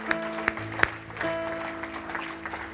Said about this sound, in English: Come on, give them a round of applause this morning.